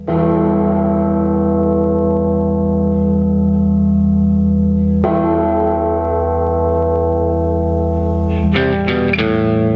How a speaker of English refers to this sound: Gong of the bell.